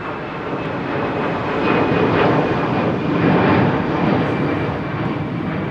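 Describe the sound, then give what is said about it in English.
A jet aircraft's engine roars steadily as the plane passes at Zurich Airport, a broad rushing drone swelling louder midway and then easing off slightly, with no voices present. “It should be a private plane coming in from Malaga, and then an aircraft coming in from Belgrade, a private jet from London.”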